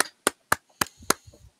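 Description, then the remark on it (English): A soundboard applause effect: four sharp, loud claps land in an even, unhurried rhythm, each a crisp burst that dies away quickly, followed by faint low murmuring. “Where's the soundboard applause? I just did that.”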